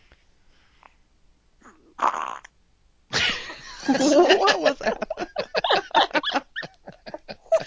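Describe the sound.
An old dog lets out a short, rough burp, followed by a quick question from a person and a stretch of loud, rhythmic laughter.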